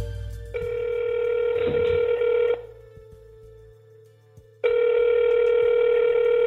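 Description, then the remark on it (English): A telephone ringback tone purrs twice on an outgoing call to a family member, each long buzzy ring separated by a two-second pause, loud as if through the handset, with a brief click during the first ring. “A story he told me on that phone call remained with me.”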